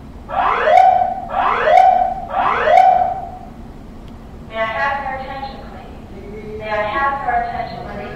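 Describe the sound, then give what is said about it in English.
A false alarm goes off: three loud rising whoops in quick succession, then two longer, steadier buzzing blasts with a brief gap between them. “Okay, that was just a false alarm.”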